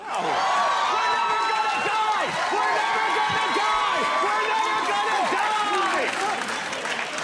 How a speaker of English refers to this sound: I like how you left in the big applause break at the end. You know the executive producer was just hitting that applause sign button.